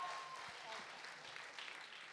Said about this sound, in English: So can you guys just give him a round of applause again?